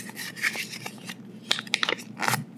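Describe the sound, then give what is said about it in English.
Crinkling and rustling of a sheet of paper being folded in half yet again, with a few sharp crackles and creases over a couple of seconds, no voices. “It's already getting tough.”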